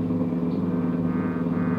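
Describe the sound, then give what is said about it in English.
A police cruiser car driving through a city at night in a steady downpour during a manhunt, its engine holding a steady, low droning rumble with no change in pace and no voices present. “With a general description of the suspect, some of them were to travel on foot, some in cruiser cars.”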